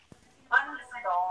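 A mobile phone gives off a short alert: a bright, tonal chime in two connected bursts lasting about a second, moderately loud after a brief tap.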